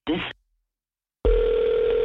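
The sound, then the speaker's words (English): A brief burst of voice, then a pause of silence as a phone call drops, followed by a loud, steady telephone dial tone that holds unbroken to the end, clear. “My phone started ringing. Like, while I was on the phone with you, it started ringing.”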